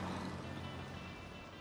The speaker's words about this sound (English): Wasn't that an MGA 1500? Ah, you know your cars. I like them. I love the sound they make. The way it goes right through you. Right. That vibration.